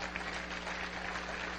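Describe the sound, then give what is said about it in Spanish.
An audience applauds for God in a steady, dense wash of clapping that holds evenly throughout, with no voices rising above it and a low hum beneath. “¿Cuánto le regalan un aplauso a Él?”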